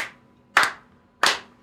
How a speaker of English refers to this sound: ready to clap? How many times? Three times. Three slow. On three. One, two, three.